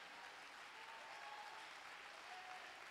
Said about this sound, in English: I wonder if we can give a Holy Ghost hand clap of praise to the King. Come on, let's make some noise for the Lord.